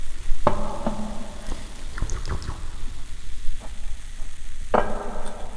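Steady crackling fizz of tiny bubbles from beer poured into a glass, a soft continuous hiss of pops, with two sharp ringing onsets standing out, one early and one near the end. No one talks.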